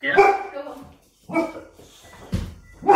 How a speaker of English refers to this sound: Oh, the dogs are about to start barking. You listen to this. There they go.